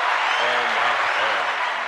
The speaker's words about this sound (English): We're gonna give you a round of applause.